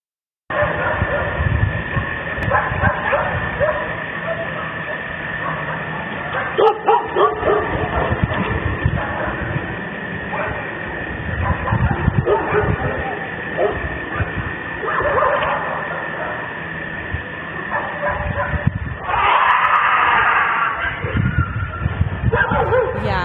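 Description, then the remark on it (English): A dog yelps and howls as if in pain, its cries rising and falling almost nonstop over a harsh, muffled rumbling background, with a sharper, louder outburst near the end. “Some people theorize that maybe a dog fell in or was on the volcano, like near one of these cameras or near the things recording and like somehow got hurt and all the sounds are coming from the dog,”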